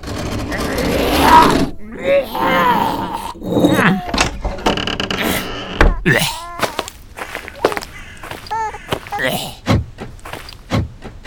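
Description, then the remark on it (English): Several sharp mechanical clunks of a hearse's door handles being yanked on locked doors, irregularly spaced, mixed with a person's strained grunts and groans. “Doors are locked.”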